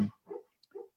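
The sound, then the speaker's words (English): A dog whimpers softly in its sleep as if having a nightmare, two short muffled whines after a brief low sound, close by and quiet, with no one speaking. “I'm sorry, my dog's like, I think he's having a nightmare in his sleep right next to me.”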